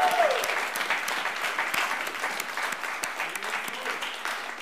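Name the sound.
audience round of applause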